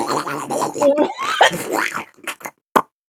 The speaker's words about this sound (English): Oh, it seems that you're coughing.